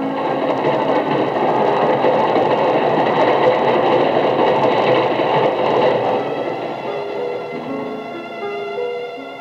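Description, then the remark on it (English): A train pulls into a station platform with a heavy, steady rumble layered with high metallic squeals from the brakes, easing slightly toward the end as it slows to a stop. “There's your train.”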